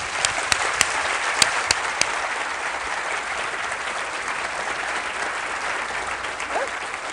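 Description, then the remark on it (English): Sustained applause from an audience welcoming novelist Kate Atkinson, a dense steady wash of clapping with a few sharp, louder claps standing out in the first couple of seconds, holding even throughout without any voices. “So please join with me in giving a huge welcome to Kate Atkinson.”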